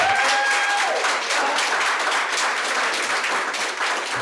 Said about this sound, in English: And based on the applause in the video as she walked away from the lectern, she wasn't alone.